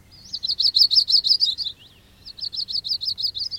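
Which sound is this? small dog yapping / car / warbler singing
warbler singing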